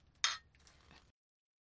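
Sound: beer bottle being opened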